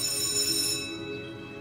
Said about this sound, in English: The bell sounded before I could.